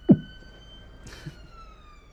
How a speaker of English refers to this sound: sorry, I've got a siren outside my window. It's very loud.